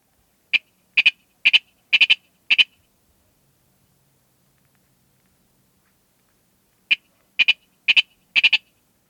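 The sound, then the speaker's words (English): A male Virginia rail gives its repeated spring tinket song: a run of sharp, doubled metallic tinket notes, about five in a steady rhythm, then a pause and another series of four, clear with no talking. “During spring, males give a repeated tinket song.”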